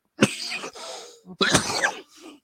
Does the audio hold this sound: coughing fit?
yes